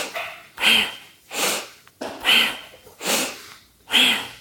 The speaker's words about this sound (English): So it's a purposeful breath, not breath of fire, but a purposeful breath that your neighbor can hear you. So it's always inhale out through the nose, your mouth is closed. So it looks like this.